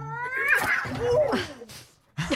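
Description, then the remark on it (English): A strained, strangled-sounding cat yowl rises and bends in pitch, breaking into a second wavering cry, followed by a brief pause and a short final squawk, loud. “That was the strangled cat noise.”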